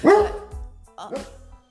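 A dog looking out a sliding glass door at a little friend outside barks twice in quick succession: a loud, harmonic first bark that slides down in pitch, then a second, slightly softer bark just after, with no one talking.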